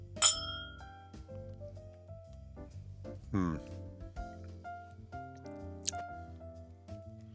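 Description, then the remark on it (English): Glasses of bourbon clink together in a toast, a sharp bright chime with a brief ringing tail near the start, followed later by a second lighter clink, with low murmuring voices in the background. “Well, cheers.”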